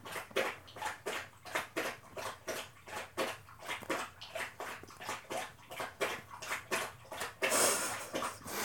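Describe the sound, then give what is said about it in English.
A thirsty female dog laps water from a bowl, a quick steady rhythm of wet slurping splashes, roughly two or three per second, continuing without pause and no voices. “Very thirsty. Thirsty dog. It's so long. She's just gonna drink the whole thing.”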